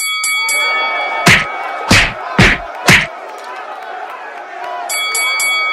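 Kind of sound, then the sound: signal or alarm, a bell being rung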